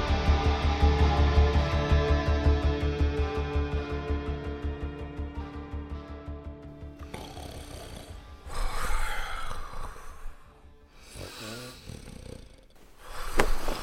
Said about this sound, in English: Please shut up. For the love of all that is holy, stop snoring.